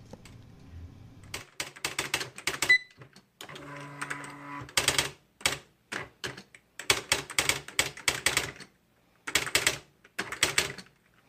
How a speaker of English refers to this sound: once you were a secretary like Irmgard, then you just don't want to miss that electric typewriter